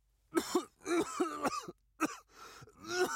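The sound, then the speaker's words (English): A man coughs violently as the air burns his lungs, in a series of harsh, rasping bursts, fairly loud, with brief gasping pauses between fits and no talking. “But the air burned his lungs and he violently coughed.”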